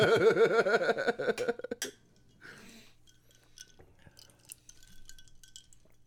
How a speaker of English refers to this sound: Take from the ice clinking in glasses that two of us anyway are on considerably higher tests than Budweiser tonight.